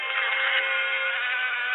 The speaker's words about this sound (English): Oh no, a bee!